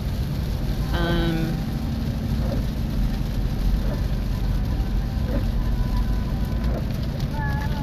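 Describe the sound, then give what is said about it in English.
Steady rain pours down in a dense, continuous hiss and patter that never lets up, with a brief faint voice rising near the start and a few soft tonal sounds underneath. “And the rain, the stinking rain that is keeping me from going surf fishing.”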